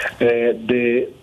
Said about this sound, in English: These phones, they never stop ringing, people giving us information about what is happening on their streets, what's in their houses.